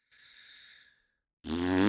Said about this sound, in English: I farted.